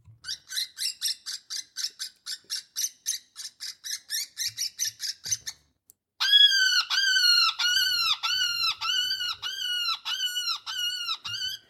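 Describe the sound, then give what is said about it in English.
A wounded woodpecker's distress call, a woodpecker sound used to get a coyote's attention: a rapid run of shrill, raspy squeaks, a brief pause, then louder, repeated harsh squawks with a descending whine, sounding alone without any talking. “And there's a lot of different sounds, like this one, for instance, another woodpecker sound.”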